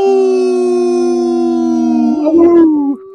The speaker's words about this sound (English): he's got the wolf. Let's get some howling.